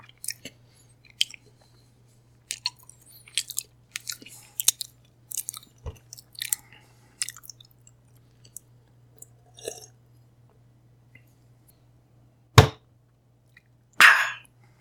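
Irregular, crunchy chewing sounds in quick bursts heard from a telephone receiver over a steady low electrical hum, ending with two sharper, louder knocks.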